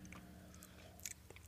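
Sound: sipping a drink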